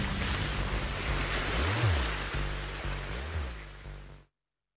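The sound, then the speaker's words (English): Loud, continuous roar of rough sea water and wind surging around a boat on the Sea of Galilee, waves estimated as high as 10 feet, with a low engine-like drone underneath and swelling rushes, cutting off abruptly near the end. “And if we use the same analysis method, we can estimate that the height of the waves to be as high as 10 feet.”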